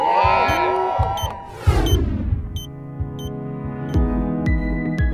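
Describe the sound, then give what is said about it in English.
A short burst of electronic intro music for the radio segment "Healthcare in America", with gliding synth tones and a rising sweep over a steady thumping beat, played loud with no one talking. “That music can only mean one thing.”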